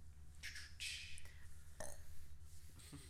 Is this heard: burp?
yes